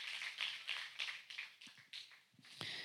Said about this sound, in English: Would you give the Lord a mighty hand clap? Stand with me.